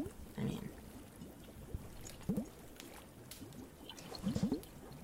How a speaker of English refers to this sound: But obviously not gonna keep the water sound and the other stuff unless you want it, but so we have to put some the space sheep sound somehow.